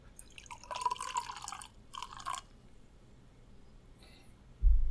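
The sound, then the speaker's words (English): Sparkling sake poured into a glass, a gurgling splash in two short bursts, the second briefer, then quiet and a soft low thump at the end. No one speaks. “Let me pour a little bit more in.”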